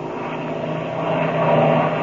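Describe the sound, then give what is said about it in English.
A steady airplane engine roars with a droning propeller hum, growing slightly louder and more intense as the plane dives down toward another airplane. No voices. “We're going to dive down and see who that is.”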